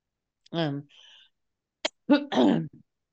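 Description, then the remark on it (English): A person who is getting over an illness coughs and clears their throat: a short voiced grunt, then a sharp single hack followed by a rougher, longer cough, with brief pauses between. “I think it's, I'm sorry, I'm just getting over a sickness. So if I cough, I'm sorry.”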